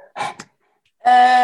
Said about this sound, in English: He's dying to play with the fox. Come on, silly dog.